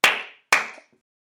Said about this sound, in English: Clap once if you can hear me. Clap twice if you can hear me.